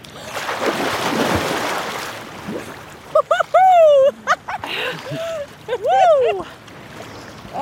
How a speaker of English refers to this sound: sometimes as a New Year's Day tradition, and jump into the freezing ocean.